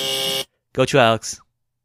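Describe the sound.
A harsh, steady quiz buzzer blares for about half a second as a contestant buzzes in to answer during a quiz game, rich in harmonics, then cuts off; after a short pause a person speaks briefly.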